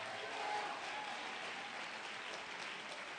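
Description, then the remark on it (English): An audience at a church service claps steadily for a few seconds in response to the preacher's call to clap and shout amen, a dense, even wash of many hands with faint voices mixed into the applause. “Somebody clap your hands and shout amen.”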